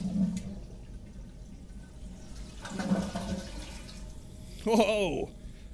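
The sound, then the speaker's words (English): A toilet flushes with a steady rushing, hissing wash of water at moderate volume, and a voice briefly speaks over it near the end. “Oh, hey, I think your toilet is on it now.”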